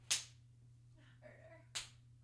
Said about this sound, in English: I'm really tempted to go up and slap her ass right now, but I'm going to. Actually, you can. Oh, I can.